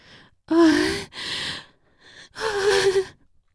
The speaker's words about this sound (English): Mary gasps as Candy kisses down her neck, savoring her skin, her delicious, full skin taut and plump as she travels down her breast mound.